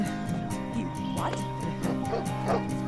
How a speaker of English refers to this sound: I've got a massive dog running around the neighborhood.